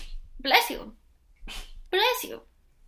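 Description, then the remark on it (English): A few sharp sneezes, each a quick voiced burst followed by a breathy hiss, coming in a short irregular series with brief pauses between them. “Bless you.”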